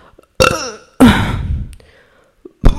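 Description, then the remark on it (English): Two loud burps in quick succession, the second longer and rumbling, followed by a brief throaty sound and the start of a third burp. “Hope you enjoyed those burps.”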